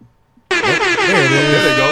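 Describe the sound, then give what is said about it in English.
A loud, sustained air horn blasts in abruptly after a brief quiet moment and holds steady at full volume, its blaring tone slightly wavering, with voices faintly underneath. “Can I get some air horns for that, please?”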